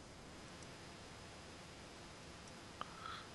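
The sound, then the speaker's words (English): A steady hiss of background noise, then a single sharp mouse click near the end, followed by a faint softer click. No one speaks. “Yeah, because I hear you clicking in the background.”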